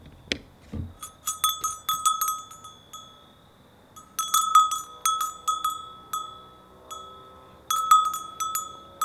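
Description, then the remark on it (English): A small bell clanks over and over in uneven bursts, its bright metallic tone ringing in quick clusters with short pauses between, and no voices. “Well, one day, Francis was walking along the countryside, and he heard a bell.”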